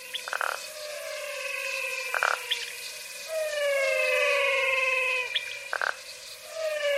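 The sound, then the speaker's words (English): A dense chorus of singing frogs in the Pantanal wetland, with many overlapping whistling, siren-like tones rising and falling continuously, punctuated by a few short, sharp calls. No one speaks. “The Singing Frogs of the Pantanal”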